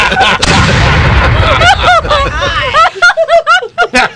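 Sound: cannon shot sound effect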